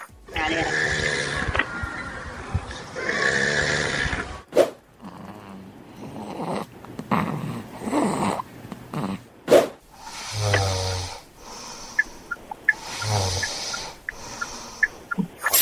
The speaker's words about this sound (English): Those are your three snores.